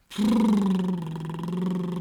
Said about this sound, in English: I can hear my dog snoring loudly.